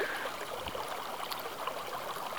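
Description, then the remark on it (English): A creek runs steadily on a sunny day with blue skies during a nature walk, a continuous bright rushing and babbling of water over stones with no voices, holding an even, moderate level throughout. “The creeks are flowing. Water, which is a source of life, is flowing.”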